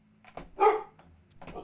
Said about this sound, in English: I'm sorry, everyone, for the stupid-ass dog barking. He just does that.